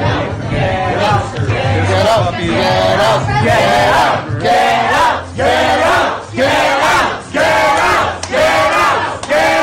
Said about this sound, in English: Get out, they scream to the mask-checking, social distancing cops, and the health inspectors end up getting out. They did.